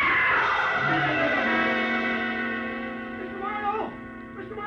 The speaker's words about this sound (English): Somebody screamed!